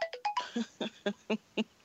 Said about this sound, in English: Whose phone is that? It ain't mine. It's Charlamagne.